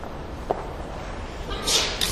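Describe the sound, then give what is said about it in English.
A short, breathy sneeze bursts out near the end, a hissy noise followed by a brief second puff, over a low, steady background murmur. “Bless you.”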